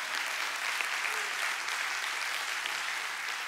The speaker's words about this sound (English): Amen? And that deserves more than a little golf clap.